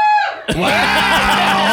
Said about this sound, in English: Oh my God, we're in front of a live studio. We have a audience. Live audience here. If our live audience could like cheer right now, come on.